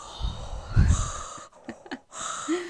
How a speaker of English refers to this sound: I need to stop, like, breathing into the mic because I can hear it in my fucking headphones. You sound like Darth Vader. I know.